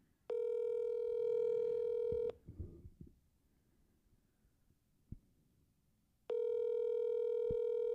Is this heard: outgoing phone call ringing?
yes